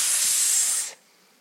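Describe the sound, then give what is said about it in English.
A person hisses like a snake, a steady, breathy sss sound held for nearly a second before cutting off abruptly into quiet. “He could have been like, snake impersonation, get ready.”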